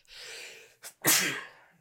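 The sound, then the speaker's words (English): A person sneezes once, loud: a drawn-in breath, a short catch, then a sharp explosive burst that trails off into breathy air. No one speaks. “I didn't just sneeze.”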